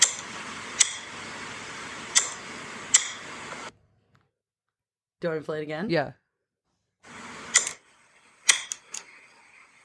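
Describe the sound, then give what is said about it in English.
Sharp clicks of a light switch being turned on and off, three spaced snaps over a steady hiss, then a brief spoken exchange, followed by a few more quick clicks. “Like turning on and off a light switch.”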